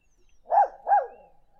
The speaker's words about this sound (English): Here's the barking sound.